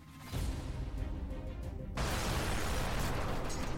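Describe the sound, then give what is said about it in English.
A loud, rumbling explosion effect bursts in, followed by a second, brighter blast about two seconds later that roars on, with dramatic music swelling beneath the booms. “Cue explosions and dramatic music.”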